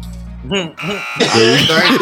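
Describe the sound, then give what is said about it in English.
A short, low electric buzzer drone, pressed with a finger, sounds for about half a second, then cuts off as loud, animated voices take over for the rest of the moment. “You know, your buzzing abilities, you know? I'm buzzing.”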